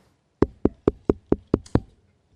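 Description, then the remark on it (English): Seven quick, evenly spaced knocks on a door, fairly loud, with no talking around them. “Can you answer that door for me? They knocking just.”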